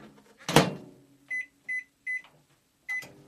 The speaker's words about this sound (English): So first of all, we're going to pour and measure 1 cup of milk into a heat-proof jug. And you're going to put that in the microwave for about 30 seconds.